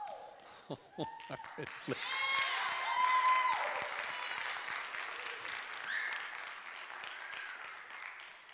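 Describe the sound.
A handful of scattered, uneven claps from about three members of a church audience during a sermon ring out at the start, a few sharp hits rather than full applause, then fade into a steady crowd murmur with voices.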